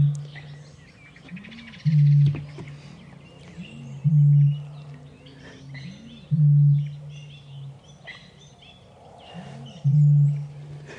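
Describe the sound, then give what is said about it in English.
A bittern booms four times at regular intervals of about two seconds in cool, still air after the wind has dropped, each deep, hollow low note preceded by a soft gulping intake, over a quiet background of faint birdsong. “what bitterns do when they want to start booming”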